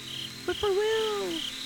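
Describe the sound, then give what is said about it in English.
Crickets chirp in a steady, high-pitched trill that pulses on and off throughout, while a brief, lower tonal call rises and slowly falls away in the middle. “Crickets are good, too.”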